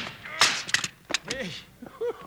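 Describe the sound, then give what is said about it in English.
Gunfire rings out: several sharp, loud cracks in quick succession, followed by brief whining, pitched sounds that fade out. No clear talking is heard. “Wow, what a shot.”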